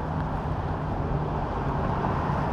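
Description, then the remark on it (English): A steady, low engine rumble of a bus approaching a bus stop, rolling slowly and holding an even loudness throughout, with street traffic noise around it and no talking. “I'm trying to see if this is the bus, because they got water right there.”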